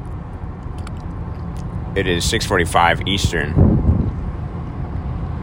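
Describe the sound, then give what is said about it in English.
Steady low road rumble and wind hiss fill the cabin throughout, with a man speaking briefly over the constant hum of a car moving at speed on the I-95 highway in North Carolina. “I'm in the car on I-95 somewhere in North Carolina.”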